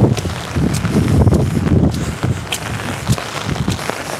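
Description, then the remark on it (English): Footsteps splash through puddle water in the rain in a steady walking rhythm, each step a short wet slap over a constant low rumble of wind. No one speaks. “You listen closely, you can hear me stepping through water.”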